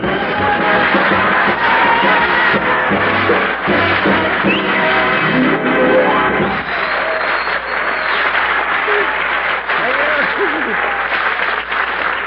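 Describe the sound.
A large studio audience of the Raleigh Cigarette Program with Red Skelton applauds loudly and steadily, the dense clapping going on for several seconds before thinning slightly toward the end, with faint voices underneath.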